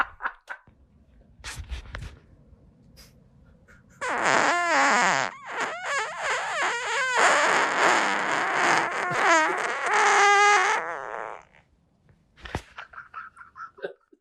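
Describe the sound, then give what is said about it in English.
A long, loud, squealing fart runs for about seven seconds, its pitch wobbling and rasping like air slowly escaping a stretched balloon neck, with faint scattered noises before and after. “I can make that exact same noise letting air out of a balloon slowly.”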